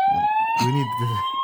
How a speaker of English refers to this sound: I love the way that's an American siren. Mm. And only a career criminal, would know the difference.